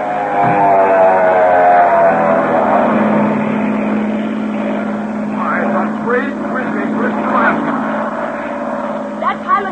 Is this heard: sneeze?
no